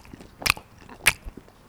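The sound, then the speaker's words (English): Two sharp, crisp crunches about half a second apart as someone bites into a crunchy snack, with faint softer chewing noises between and after. “It's crunchy, but...”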